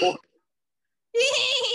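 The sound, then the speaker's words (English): A person mimics a dolphin's call with a brief vocal blip, a short silence, then a longer, high, squeaky warble, fairly loud. “What sound does a dolphin make?”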